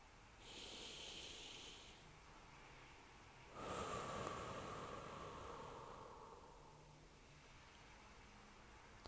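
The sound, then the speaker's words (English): A slow, deep breath drawn in sharply through the nose with a hissy rush, then a longer, softer exhale through the mouth that fades away, during a guided breathing exercise. Fairly quiet, with no talking. “One more deep breath in through your nose and out through your mouth.”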